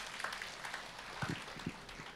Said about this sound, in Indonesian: Tepuk tangan buat Tuhan, saudara.